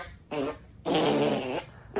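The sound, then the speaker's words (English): A 14-second fart recording: two loud, drawn-out fart noises with a buzzy, tonal quality, a short blast followed by a longer sustained one after a brief pause, with no talking. “I found a 14-second fart on YouTube.”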